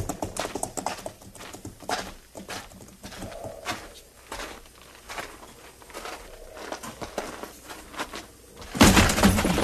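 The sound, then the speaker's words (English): Horse hooves clip-clop steadily across hard ground, a string of sharp, irregular knocks, with a louder rustling burst near the end. “And get those stolen horses rounded up.”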